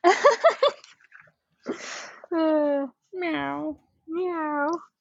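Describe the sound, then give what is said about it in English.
A person imitates a cat, giving three drawn-out, nasal meows in a row after a brief burst of voice and a breathy sound, each meow clear, with short pauses between. “Cat lawyer, the cat lawyer. Meow, meow, meow, meow.”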